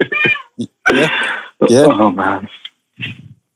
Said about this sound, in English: Yo, quiet down your cat over there, man. Sorry. He sound hungry.